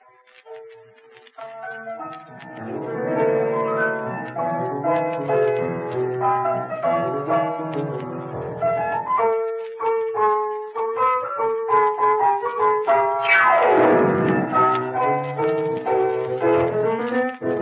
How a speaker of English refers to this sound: There. That is the rhythm of the rumba.